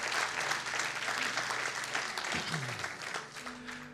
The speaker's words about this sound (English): Can I have an amen from everybody out there? Can we give the Lord a big hand clap for his word?